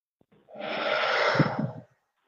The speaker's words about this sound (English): So just starting now, just three big deep breaths. So breathing in through the nose.